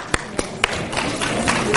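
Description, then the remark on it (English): A few scattered, sharp claps ring out, then an audience's applause for the organization Samchenu fills in as a steady, dense patter of many hands clapping at moderate loudness. “So let's offer a clap of applause for this great organization.”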